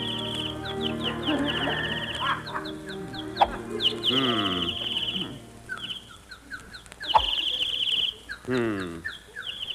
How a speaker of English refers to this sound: Darn those birds. I wish they'd stop singing. They're throwing me off my game.